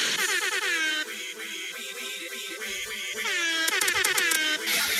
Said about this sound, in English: What about this one? This is a dope air horn.